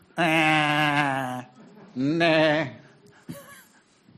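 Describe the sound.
A person imitates a Czech sheep's bleat: two loud, wavering voiced calls with a shaky, trembling pitch, the second rising, followed by a brief quieter breathy sound.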